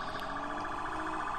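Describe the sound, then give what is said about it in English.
A police siren blares loud, its tone wavering in quick, steady pulses throughout, with no voices over it. “I hear the sirens. Here comes the NFL. NFL police coming to get you.”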